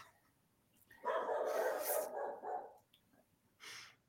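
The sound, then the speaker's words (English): Dogs bark in the background, a drawn-out, overlapping burst of barking followed by one shorter outburst a moment later, fairly muted, with no one talking. “These dogs. Chad's so mad at these dogs.”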